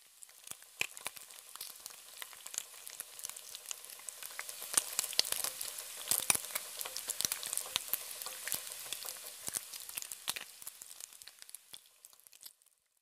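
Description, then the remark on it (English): Bacon frying in a pan: a steady, dense sizzle with sharp pops and crackles scattered throughout, building slightly in the middle. No voices. “A moment later, the smell of bacon filled the house.”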